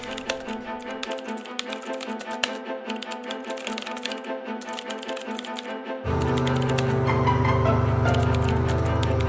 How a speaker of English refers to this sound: Wait, give us the keyboard clacks.